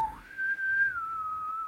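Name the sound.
person whistling a tune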